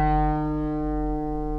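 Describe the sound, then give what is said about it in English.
The strings of a mountain dulcimer made in the 1970s, probably in North Carolina, with loose braces, ring in one sustained, steady chord, rich in bright overtones with a faint buzzing edge, holding evenly for under two seconds with no voices. “The buzz to me sounds like it might be coming from the fretboard.”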